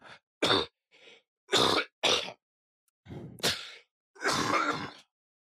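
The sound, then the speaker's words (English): A series of harsh coughs and throat-clearing bursts, several short sharp hacks followed by a longer rough clearing, with brief silent gaps between them and no talking. “At least I cough a lot.”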